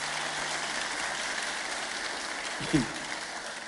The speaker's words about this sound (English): Yes, you can clap if you want to do that.